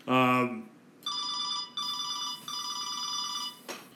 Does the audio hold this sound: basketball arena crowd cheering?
no